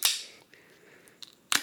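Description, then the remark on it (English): A sharp crack of the tab opening on a one-pint can of beer brewed and canned at Temperance Beer Company in Chicago, followed by a soft, steady fizzing hiss, with a couple more quick clicks and a final sharp snap near the end. “She fizzy.”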